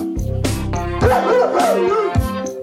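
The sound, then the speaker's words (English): A person imitates a dog's bark with a few loud, throaty "woof" sounds at uneven intervals, over a steady tonal hum in the background. “Woof, woof. I ask you, what kind of world is this?”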